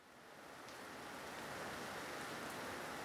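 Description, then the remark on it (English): Steady rain falls on a sanctuary with concrete walls atop a tall hill, echoing off the walls in a dense, even hiss that swells slightly in the first moments and then holds constant, with faint patter of drops and no voices. “The concrete walls of the sanctuary of Disburden echo in the sound of rain.”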